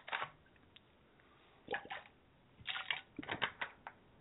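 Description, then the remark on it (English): Wet gulping and swallowing sounds in several short bursts, with a brief pause in the middle, as a person takes sips of clean water. No talking. “I'll let you chew on that while I take a drink of water.”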